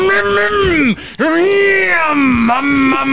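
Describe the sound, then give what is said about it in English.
A voice imitates a bulldozer engine with a loud, sustained low groaning drone that wavers in pitch, breaking briefly near the middle before rumbling on again. “Is that what a bulldozer sounds like?”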